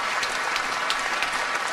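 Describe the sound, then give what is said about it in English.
Steady audience applause, a dense wash of many hands clapping at once, loud and even for the whole stretch, with no voices audible. “And listen to the applause.”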